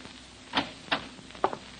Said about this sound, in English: It's 11 o'clock when you finally get back to 1214A Euclid Avenue and fit Oliver's key in the lock on the front door.